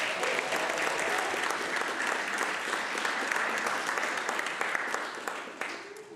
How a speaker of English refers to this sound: Okay, that was awesome. I mean, if y'all don't give an applause to a family...